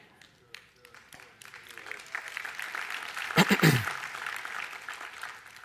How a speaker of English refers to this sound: It's like a wave. A clap started from here, then it went over there.